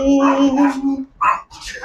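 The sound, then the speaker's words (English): A dog gives a drawn-out, whining yowl that breaks off, followed by two short, sharp barks, loud. “Come on, doggy. Hello, doggy.”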